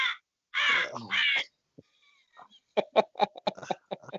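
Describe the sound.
Someone imitates a crow as a sound effect, giving about three loud, raspy caws, the last two running together, followed by a brief pause and then lively talking or laughter.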